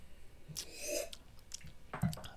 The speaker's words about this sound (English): I made a slurping sound on purpose.